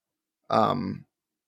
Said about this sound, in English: actually, sorry, I'm like burping.